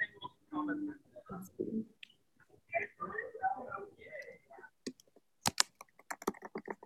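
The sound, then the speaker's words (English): Rapid typing on a computer keyboard to look something up: a run of sharp key clicks in an uneven rhythm, coming in after a stretch of people talking and continuing to the end. “I wish there was a way to type on the computer without it sounding like I'm typing.”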